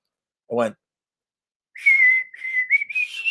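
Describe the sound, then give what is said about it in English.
A short vocal blip, then a clear whistled melody of sustained notes with small pitch steps, loud, standing in for the guitar parts of a self-recorded song. “And then for the guitars, I just did whistles.”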